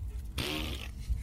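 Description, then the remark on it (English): A single short, buzzy fart noise made with the mouth, a half-second raspberry burst that is fairly loud, with no talking around it. “If I, like, rush through a sphincter, can I make a fart noise?”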